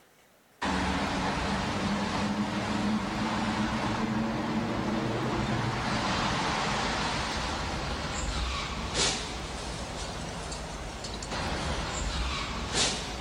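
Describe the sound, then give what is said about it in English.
A red Dodge Viper sports car engine roars in abruptly as it drives out of a tunnel, holding a loud, steady drone with a broad rushing wash of road and air noise, continuous for over ten seconds, with no talking. “And so I want you to pay attention to this red Viper just for a moment.”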